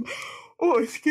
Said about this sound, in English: I don't feel like I'm tired. I feel like I'm just yawning, you know, if that makes sense.